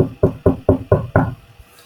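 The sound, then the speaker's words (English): Six quick, evenly spaced knocks on a door, loud, with a short pause after the final rap and no voices present. “And then all of a sudden she hears a knock at the door.”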